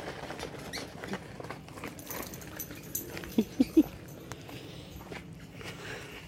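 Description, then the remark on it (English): A dog passes by with a biker, its paws pattering softly over a low outdoor rumble, with three quick, faint squeaky whimpers in the middle. “Biker and their dog.”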